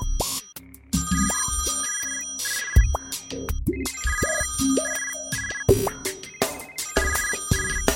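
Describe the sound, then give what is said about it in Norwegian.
A telephone ringtone for a call from the boss plays a busy electronic melody of bright, repeating tonal bursts, rising and falling in quick patterns over a cluttered, cacophonous background with no speech. “Sjefen ringer, den må jeg ta.”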